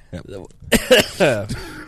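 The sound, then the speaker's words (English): A person clears their throat and coughs a few times in quick, rough bursts, with some voiced grunting mixed in between the louder hacks. “I'm going to cough now.”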